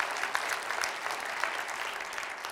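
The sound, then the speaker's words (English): An audience applauds steadily, a dense, even wash of many hands clapping that holds at a constant level throughout with no voices rising above it. “Yes, clap for them.”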